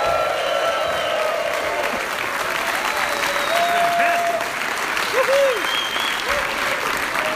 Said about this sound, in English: That's a great round of applause. Thank you, gentlemen, so much for the warm welcome.